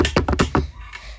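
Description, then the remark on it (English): Quick, light taps made with two fingers of each hand on a hard desk surface, about five in a loose rhythm within half a second, then trailing off into quiet. “Put them on your desk gently. Keep doing that so it makes a sound like this.”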